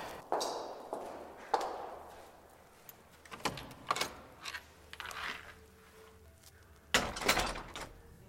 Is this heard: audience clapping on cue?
no